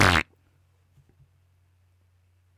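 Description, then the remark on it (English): A single short, loud, buzzy raspberry, a voice imitating a fart, lasting a quarter second, then near silence over a faint low hum with a couple of soft taps. “I tried to make a fart noise and then you guys follow up.”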